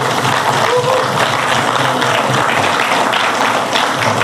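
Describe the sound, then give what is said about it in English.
An audience at a morning service claps for the Lord together in a dense, steady wash of applause that holds at full strength for about four seconds, with a few indistinct voices mixed into the crowd noise. “In Jesus' name, give the Lord a clap this morning.”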